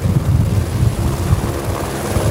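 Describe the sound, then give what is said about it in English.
A search and rescue helicopter flies overhead with a steady, loud rotor thump and engine roar, its low pulsing beat continuous throughout with no voices. “The RECO SAR helicopter detector will help crews search for missing people in the outdoors year-round.”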